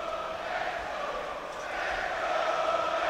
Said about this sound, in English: Crowd responding, they know who is about to be introduced.